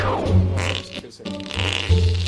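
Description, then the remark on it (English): Two drawn-out, buzzy fart sounds, low and rumbling, each lasting close to a second with a short pause between them, loud with no talking. “They farted.”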